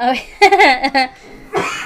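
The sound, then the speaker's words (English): A person coughs, with a few throaty, voiced bursts followed by a harsher, breathy cough near the end. No clear words are spoken. “Do you need a cough drop?”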